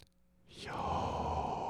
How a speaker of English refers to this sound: This midrash teaches that you aren't supposed to say those consonants. You are supposed to breathe them because they are the sound of breathing. So with that in mind, the name of God sounds like this.